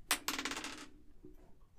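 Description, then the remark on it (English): Dice clatter across a hard table in a quick burst of sharp, rattling clicks that settle within about a second, with no one speaking. “Where's the dice at?”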